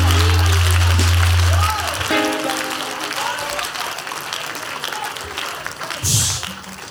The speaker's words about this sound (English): Oh, those who are clapping.